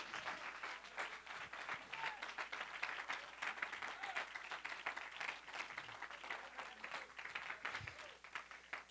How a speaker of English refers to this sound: Clap your hands to the Lord and praise.